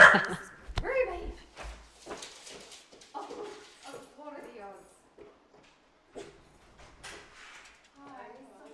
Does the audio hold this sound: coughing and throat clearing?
no